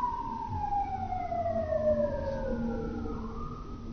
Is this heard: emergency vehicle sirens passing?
yes